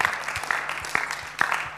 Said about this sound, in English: And I'd just really like to thank our musicians as well. I know they've skived off, but they do an awesome job. So could we give them another round of applause, guys, because I think they're amazing.